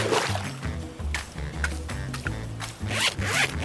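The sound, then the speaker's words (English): A retractable dog leash with a grappling hook on its end extends with a loud, continuous zipping whir for several seconds, its cord reeling out in uneven rasping bursts and swells. No one speaks. “It's a retractable dog leash.”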